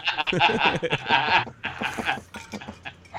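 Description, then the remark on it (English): A female dog whines and yowls insistently, wanting to go outside, in a series of loud, bleating cries with brief pauses between them, wavering in pitch throughout. “Anyway, we'll take a quick break while I let my dog go outside. She clearly needs to get outside and stretch her legs for a moment.”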